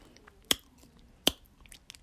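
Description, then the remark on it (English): Gum being chewed: two sharp, wet smacking clicks less than a second apart, then a fainter third one at the end, with no talking. “and I made a vow to myself that I ain't going to chew gum for a year.”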